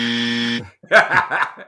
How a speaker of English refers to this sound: Game over. I think, no, that's just the wrong answer. But that is the buzzer.